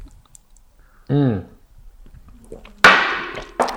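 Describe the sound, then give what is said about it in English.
A brief voiced exclamation, then two sharp, bright clinks of glasses touching in a toast with Grasschlager to season two, the first ringing briefly before the second quick tap. “And okay, so to cheers.”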